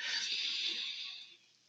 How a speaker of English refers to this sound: And so take a deep breath in and hold it.